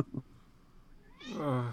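A cat lets out a single drawn-out, rising meow at its owner, loud and clear, after a couple of faint soft thumps.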